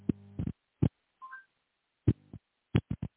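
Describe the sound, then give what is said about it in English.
A string of short phone keypad tones at an uneven typing rhythm, with a brief two-note rising beep partway through, as a search about the death of Charles Taft Russell is typed on a phone. The tones are fairly quiet, and nobody speaks. “Charles Taft Russell, let's see what the phone tells me.”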